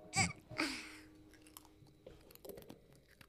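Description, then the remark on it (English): Crisp crunching of a pretzel being bitten and chewed by a child, two loud crunches followed by softer, irregular chewing sounds into the microphone. “This is the cutest sound of a pretzel.”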